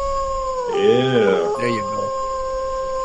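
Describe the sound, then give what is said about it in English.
A short, wavering howl rises and falls for under a second, followed by a man briefly speaking, with a steady electronic hum underneath throughout. “Is there any howling going on in your sounders?”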